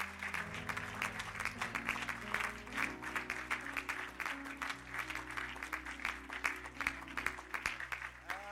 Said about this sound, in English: Put your Bibles down. Amen. Let's clap our hands one more time to the Lord.